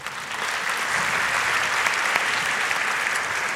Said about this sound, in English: And I think all of you and the organizers deserve a round of applause.